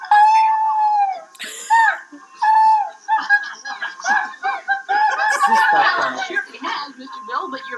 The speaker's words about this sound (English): Hey, Mr. Bill, one of your good friends is coming to visit. Here comes Mr. Bill's dog.